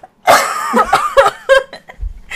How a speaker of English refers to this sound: Sorry, I've been trying to hold in a cough.